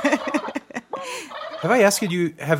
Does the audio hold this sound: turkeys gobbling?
yes